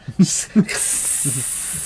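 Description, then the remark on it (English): A person makes a drawn-out hissing, sizzling sound with their mouth, steady for about a second, after a couple of short voiced bursts and with faint vocal murmurs underneath. “Hot! Sizzling.”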